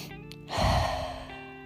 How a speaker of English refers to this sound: Inhale through your nose. Exhale through your mouth. Move at a pace and a rhythm that's comfortable for you. There should be no straining to breathe.